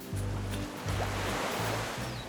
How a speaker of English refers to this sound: Today, he lives just a stone's throw from the beach in Barbados. Outside his window, you can see the crystal water, hear the waves crash.